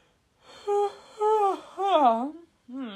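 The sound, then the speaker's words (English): A long, voiced yawn that stretches through several moaning swells, its pitch wavering and bending up and down before trailing off, with no other speech around it. “Yawn to prove it.”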